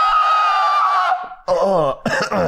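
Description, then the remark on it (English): A loud attempt at a high-pitched scream: a sustained thin, strained shriek for about a second, followed by two short, rough, raspy bursts that break up. “Can you do high-pitched screams?”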